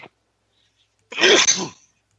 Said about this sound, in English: Who sneezed just now? … did. I did. Sorry.